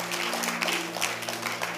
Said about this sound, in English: Oh, if you are clapping, continue clapping.